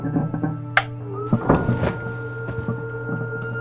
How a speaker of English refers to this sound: Closing launch doors.